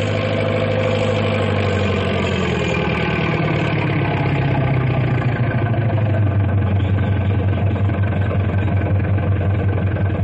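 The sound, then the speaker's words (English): The engine of a heavy double caterpillar tractor called Big Brute runs steadily and loudly, its deep rumble sinking lower in pitch partway through and then holding a throbbing, vibrating drone. No one speaks. “That big double caterpillar tractor, Big Brute.”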